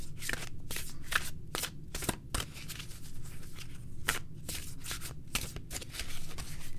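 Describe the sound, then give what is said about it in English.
A deck of oracle cards taken from its box and shuffled for an oracle draw, with a continuous papery riffling broken by sharp bursts of card slaps, steady and moderately loud with no talking. “So let me just get them out of the box. And I'm going to do a shuffle.”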